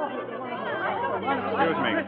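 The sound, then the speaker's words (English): A crowd of admirers jammed in the corridor outside a dressing room chatters all at once, a dense, steady babble with no single speaker standing out, fairly loud throughout the short stretch. “The night we sang together for the first time, the corridor outside of a dressing room was jammed with admirers.”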